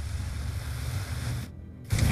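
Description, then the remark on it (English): A surge of water bursts from the Shogun's hands, powered by the water crystal in his forehead, blasting two people backwards. It gushes with a steady, hissing roar, briefly dulls to a muffled rumble, then bursts back louder and harsher at the end. No voices. “A surge of water burst forth from his hands, blasting Johnny and Miyamoto backwards.”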